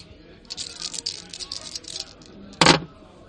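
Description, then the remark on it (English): Dice rattle and clatter for a couple of seconds, then one sharp, louder knock as they land on a hard surface, over a faint background murmur. “Sounds like I'm asking for some social dice.”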